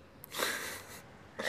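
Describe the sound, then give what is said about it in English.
A breathy, hissing sneeze bursts out for about half a second, followed by the start of another; no talking, and the sound is fairly soft. “Jesus, those sneezes are coming in so hot on my headphones.”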